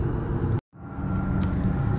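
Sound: car interior noise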